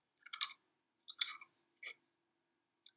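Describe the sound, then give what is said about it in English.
Crisp crunching of a chip being bitten and chewed, with two loud crunches followed by a smaller one and a faint click, in near silence. “it is deafeningly quiet other than the crunch of my chip.”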